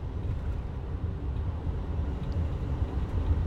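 A steady, low droning rumble of road and engine noise from inside a moving truck cab, continuous and fairly loud throughout, with no voices.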